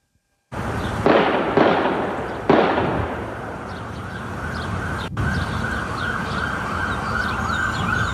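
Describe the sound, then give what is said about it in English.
Several loud, sharp pops like gunshots burst out in the first few seconds during an active shooting at a bank, with someone screaming "active shooter", followed by a steady, noisy outdoor background with sirens wailing. “In a video provided by WLKY, multiple loud pops that sound like gunshots can be heard from someone screaming "active shooter" at the bank.”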